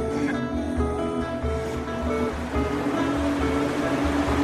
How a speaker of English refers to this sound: This is the River Fane. This forms the border between County Monaghan and County Armagh, and County Monaghan and County Low.